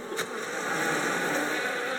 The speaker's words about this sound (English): Is that a whole swarm of bees near here?